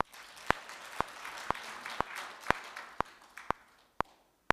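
A crowd applauds with a dense, steady patter of many hands, punctuated by sharp, evenly spaced claps about twice a second, before the applause thins and fades out.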